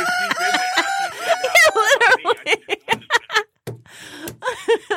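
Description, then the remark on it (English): A rooster crows loudly, a long wavering call, followed by a run of choppy, rhythmic clucks and squawks that fade toward the end. “Why did this rooster just show up?”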